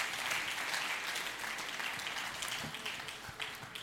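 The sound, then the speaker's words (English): A church audience claps their hands in dense, continuous applause, a busy wash of overlapping claps that holds steady before easing slightly toward the end, with scattered voices mixed underneath. “jump, clap your hands, shout hallelujah, something good.”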